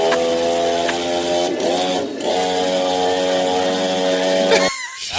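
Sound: chainsaw running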